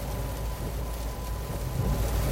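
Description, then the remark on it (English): Heavy rain from the aftermath of a tropical storm pours down in a steady, dense wash of hiss with a low rumbling undertone, constant in level and unbroken by any voices. “It's going to be a lot of rain where I'm at.”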